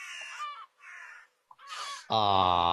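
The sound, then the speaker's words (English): A seagull in a played video, having just eaten a full-grown rabbit, gives several harsh, raspy squawks in quick succession, then a louder, sustained cry, all prominent with brief pauses between calls. “So for those of you who are just listening, there's a seagull who just ate a bunny hole.”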